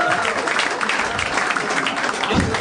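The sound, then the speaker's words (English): Steady applause from an audience fills the whole stretch, a dense wash of clapping hands that stays loud and even without letting up. “Ladies and gentlemen, can I get a round of applause, please?”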